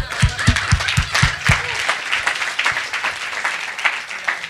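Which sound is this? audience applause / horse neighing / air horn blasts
audience applause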